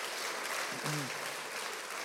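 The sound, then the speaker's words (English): A large crowd claps and cheers for God in a steady, dense wash of applause, with a single voice briefly whooping partway through. “Can we cheer God for this faithfulness in us?”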